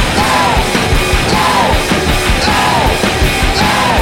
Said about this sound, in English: Yeah, that song ends in like 4 minutes of them shouting ape.